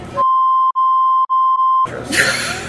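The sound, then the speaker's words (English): A loud, steady censor bleep tone holds for over a second and a half, with a couple of tiny dropouts, cutting cleanly into noisy background talk before and after. “Beep!”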